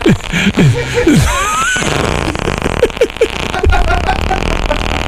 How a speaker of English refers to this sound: I cannot believe that you guys still are bending over laughing about the fart sound effects.